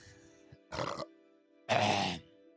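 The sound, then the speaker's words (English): Two guttural burps into a microphone, a short one followed by a longer, louder one, rough and low-pitched with a gravelly texture, and no talking around them. “My purpose is to burp into microphones.”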